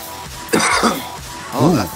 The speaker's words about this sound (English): Watch that cough, homie.